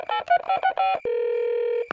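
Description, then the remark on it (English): A quick series of telephone keypad tones beeps out as someone dials a call, about seven short presses in an uneven rhythm, followed by a steady ringing tone that holds for nearly a second, clear. “maybe I should get Mr. Bell and Arnie to help me on this case. Yeah, I'll give them a call.”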